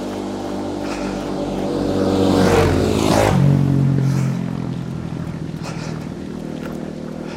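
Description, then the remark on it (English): A small motorcycle and a quad bike pass by on a bike path in the middle of nowhere, engines rising to a peak and then fading away, with steady wind noise throughout and no talking. “Okay, so I just met a small motorcycle and a four-wheel motorcycle.”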